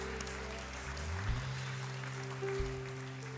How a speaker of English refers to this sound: Clap your hands to the Lord one more time. Hallelujah.